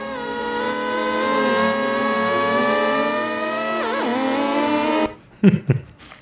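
A buzzing, harmonic-rich Tron light cycle hum holds a fairly steady pitch for about five seconds, wavering and dipping once near the end before cutting off, followed by a brief burst of talking.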